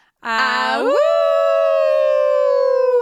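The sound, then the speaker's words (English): A loud, wolf-like awoo howl that starts low, swoops sharply upward in pitch after a brief opening, then holds a long steady note for a couple of seconds, with no talking. “I know we never talk after the awoo.”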